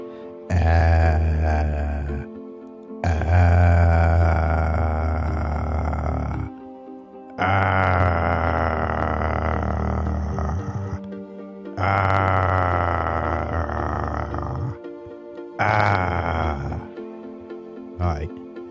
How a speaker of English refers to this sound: I just feel like primal screaming there.